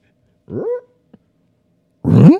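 A dog lets out two loud barks about a second and a half apart, the second rougher and trailing into a throaty growl, with silence around them.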